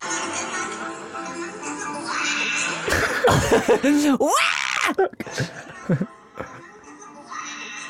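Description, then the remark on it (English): A woman lets out a loud, wavering scream as she is flipped, rising and falling for a couple of seconds midway through, over steady outdoor noise, with other voices shouting afterward. “You can hear the scream.”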